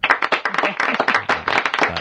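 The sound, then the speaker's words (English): A burst of applause played as a sound effect, dense overlapping claps filling the whole moment at steady loudness, with no talking over it. “Hold on, I need to give you some applause for that.”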